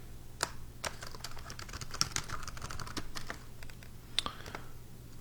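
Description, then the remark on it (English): Rapid, irregular clicking of computer keys being typed on, fairly loud, with a few sharper strikes standing out over a low steady hum. No one speaks. “I hate this keyboard so much.”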